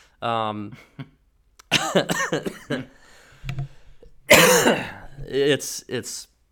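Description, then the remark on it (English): A few loud, close coughs and throat-clearing bursts right against the microphone, spread over several seconds with short pauses and some voiced vocal sounds between them. “I'm sorry for coughing in the microphone there on that one”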